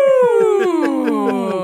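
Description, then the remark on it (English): A voice imitates a whale call, holding one long, loud, drawn-out moan that slowly slides downward in pitch and wavers with a steady pulsing throb. “Well, we were speaking whale.”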